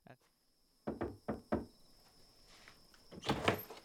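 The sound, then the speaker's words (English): Three firm knocks on a door in quick, even succession, fairly loud, from someone going door to door, followed by a short pause and then a brief burst of louder noise. “Probably when they're going door to door.”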